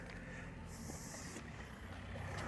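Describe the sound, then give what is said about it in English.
Steady road traffic rumbles by with cars passing, a brief hissing burst riding over the engine noise partway through. No voices are heard. “more cars.”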